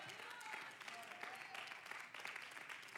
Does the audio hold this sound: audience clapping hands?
yes